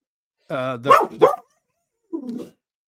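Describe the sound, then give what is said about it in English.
A German Shorthaired Pointer dog barks in a quick run of three loud, sharp barks, the first drawn out and whiny, then after a short pause gives one softer, lower bark. “you have a dog named Winchester? I do. A German Shorthair Pointer.”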